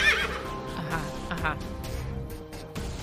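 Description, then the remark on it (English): A horse whinnies loudly and shrilly as it steps in through an automatic door that has just opened, then gives a shorter whinny a moment later, with hooves clopping faintly and unevenly underneath against a busy, noisy background. “And in steps a horse.”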